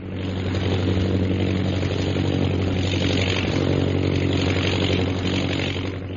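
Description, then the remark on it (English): A steady, loud airplane engine drones throughout as the plane flies high over the hills of Upper Burma, a low harmonic hum with a constant rumbling texture and no voices. “Jungle Jim and Shanghai Lil are in a plane which is high over the hills of Upper Burma.”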